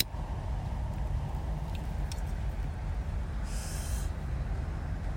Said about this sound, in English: Turn off my car so you don't have to hear that.